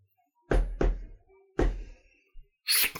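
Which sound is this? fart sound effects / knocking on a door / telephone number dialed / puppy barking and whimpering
knocking on a door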